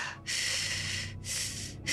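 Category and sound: vocal imitation, imitated heavy breathing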